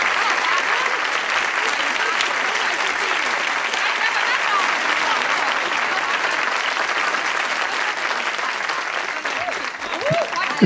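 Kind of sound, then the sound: crowd, audience applause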